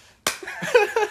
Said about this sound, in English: Oh, we interrupt this program for a for some good slapping.